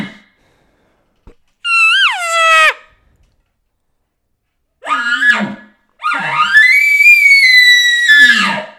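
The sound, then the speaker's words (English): A voice imitates a roundup bugle call: three loud calls with a short high falling squeal, a rougher burst, then a long, strained, high-pitched bugle with a grunting tail, separated by brief silences. “All right, I gotta hear this roundup bugle.”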